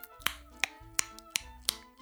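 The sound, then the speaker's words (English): A steady series of about six crisp finger snaps used as a countdown before a greeting, evenly spaced roughly a third of a second apart, each a sharp bright click over a faint humming background. “What was the clicking noise, by the way? That was the countdown.”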